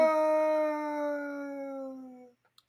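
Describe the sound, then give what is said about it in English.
A single long howl from the wolf Hopper, a character in the books and TV show, holds a clear, steady tone that slowly sinks in pitch before cutting off, followed by a few faint clicks in near silence. “The wolf known as Hopper.”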